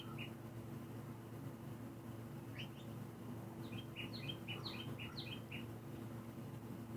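Birds chirp and sing in quick bursts of short, high tweets that cluster in the second half, set against a steady low hum. No one speaks.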